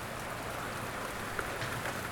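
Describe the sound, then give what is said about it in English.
A steady, dense roar of heavy rain pouring down on one section of a causeway under clear, dark skies, a continuous hiss with a few brighter spatters of drops, no voices, filling the whole short stretch at an even loudness. “And there is a torrential, just downpour of water, just raining down on this one section of the causeway.”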